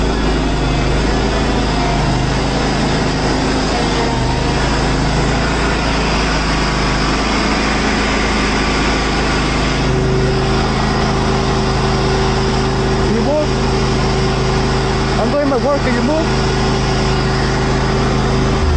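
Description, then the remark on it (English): A lawn mower engine drones steadily and loudly as a man mows his lawn, a continuous buzzing hum with no pauses and no voices. “This is a white lady walking up to a, I guess, Mexican or Latin guy who is mowing his lawn and asking for his papers.”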